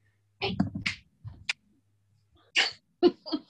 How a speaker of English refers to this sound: Sure, as my dog is about to go crazy here.